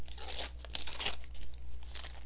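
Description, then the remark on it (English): Loud ripping of Barbie wrapping paper off a gift in several quick tears and crinkles over about two seconds, with no talking. “It's wrapped.”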